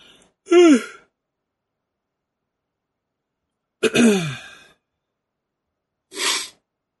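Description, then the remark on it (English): A few abrupt nasal bursts spaced apart, with a sharp, wet snort blowing snot out through the nose from laughing hard, between short laughing exhales, then a final quicker sniff. Fairly loud, no talking. “No, I just laughed so hard that snot blew out of my nose.”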